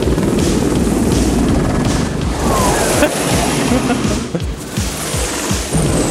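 Apache helicopter rotors thump loudly and steadily in a clip from the film Firebirds, a dense, rumbling drone with a rhythmic low pulse and a broad rushing wash over it, continuing through the whole stretch.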